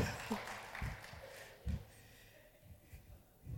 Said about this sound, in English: But first ever round of applause.